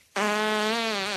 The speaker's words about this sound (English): That's …'s mad fart.